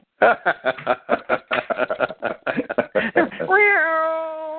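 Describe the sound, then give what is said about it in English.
A person imitates a cat, making a burst of quick, choppy chattering noises before drawing out a long, wavering meow at the end, fairly loud. “We speak cat.”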